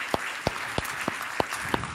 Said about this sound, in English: If you are a dad, I want you to stand up real quickly, and church, let's give them a round of applause.